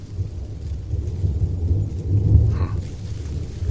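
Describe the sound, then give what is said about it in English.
A deep, continuous rumble of thunder rolls close by, swelling to a heavier peak midway before easing off, with a faint hiss of rain in the background and no voices. “Can't smell rain yet, but that's close.”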